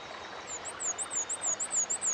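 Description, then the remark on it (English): A black-and-white warbler sings a rapid series of thin, very high two-part notes, about eight in a steady squeaky rhythm, above a constant soft background hiss. “It's a black and white warbler.”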